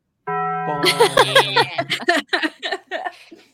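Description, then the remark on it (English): A bell sound effect, played before a trivia question, rings out with a sustained, steady tone that lingers as people break into laughter and chatter over it, the voices continuing after the ringing fades. “Play the bell.”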